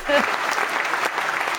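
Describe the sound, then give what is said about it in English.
A sitcom studio audience breaks into steady, dense applause, a wash of many hands clapping at once, loud and continuous throughout the short burst with a brief cheer near the start. “Or like the Friends applause.”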